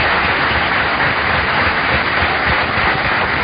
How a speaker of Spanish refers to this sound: ¡Dale un aplauso a ese Cristo maravilloso!